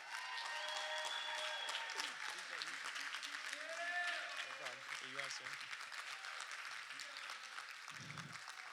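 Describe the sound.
A large audience at City Life Lansing claps loudly and steadily for several seconds as a pastor comes out, a dense wash of applause with scattered voices and cheers mixed in and faint low tones underneath.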